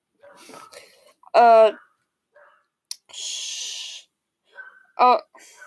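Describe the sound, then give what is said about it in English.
A dog barks twice, each bark a loud, sharp, tonal yelp several seconds apart, with a breathy hiss and faint low sounds in between. “Why is there a freaking dog? Shut up.”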